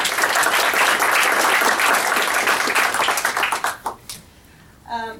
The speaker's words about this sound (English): But on that note, I'd really like everybody just to give the ambassador a round of applause.